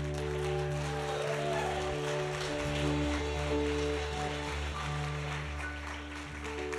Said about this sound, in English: Let's go ahead and just keep clapping for the Lord here just for a moment longer. Thank you, Lord.